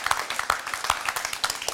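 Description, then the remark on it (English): A group of people clapping together, a dense patter of overlapping hand claps with a few sharper, louder claps standing out at a roughly steady pace, without talk. “That's a clap. That's a clap.”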